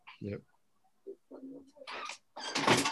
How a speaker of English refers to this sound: here, let me close this door. Yep.